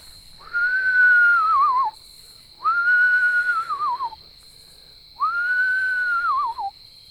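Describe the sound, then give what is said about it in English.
A person whistles three long owl-like calls to call an owl, each about a second and a half, with a quavering drop at the end, separated by short pauses. The whistles are clear, with no talking. “So now I'm going to call.”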